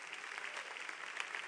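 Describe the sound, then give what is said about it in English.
A crowd applauds steadily for William Carey: a dense, continuous patter of many hands clapping at once, fairly soft and even, with no voices over it. “But when the light of the gospel came, can you clap your hands for William Carey?”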